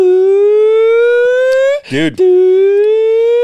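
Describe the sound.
A voice imitates a wailing siren with a long, steady, slowly rising tone, broken briefly by a rough catch in the middle before the sustained wail resumes. It is loud.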